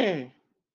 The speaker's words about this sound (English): I'm so sorry. I'm clearing my throat.